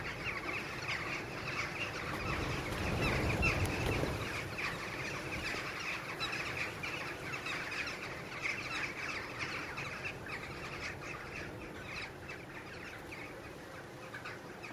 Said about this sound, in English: Ooh, there go the jackdaws.